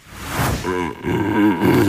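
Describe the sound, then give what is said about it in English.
A big dog huffs through the cardboard tube from a roll of kitchen roll held in its mouth, producing a breathy rush followed by a few wavering, hollow hooting tones, fairly loud, with no talking. “It's a dog doing a flute solo, is how it's billed.”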